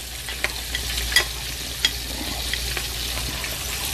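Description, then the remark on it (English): Hot oil ladled into a seasoning blend gives a steady, bright crackling sizzle throughout, broken by a few sharp metallic clinks and scrapes. No one speaks. “So while that's going on, I'm gonna carefully ladle out some of this oil and put it inside this seasoning right here, this seasoning blend.”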